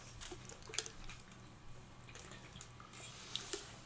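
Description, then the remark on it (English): Water that is not cold pours steadily into a very big water bottle, a soft continuous splashing hiss broken by a few brighter drips and gurgles, fairly quiet, with no talking. “Fill me up. Is it cold? You don't got no cold water.”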